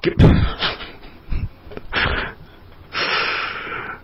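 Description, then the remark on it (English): A single sharp, explosive sneeze bursts out at the start, followed by a few breathy sniffs and rough exhales over the next few seconds. “God bless you.”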